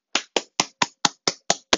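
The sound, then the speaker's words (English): A single person claps for themselves eight times after reading a poem, in a quick, steady rhythm, each clap a sharp, crisp slap with no voices or other sounds around it. “Clapping for myself.”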